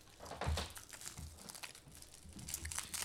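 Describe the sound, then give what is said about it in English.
Crinkly plastic wrapping of a candy treat with an extra inner layer of packaging being handled and pulled open, a busy run of sharp crackles and rustles that continues steadily throughout, with no voices. “It has extra packaging.”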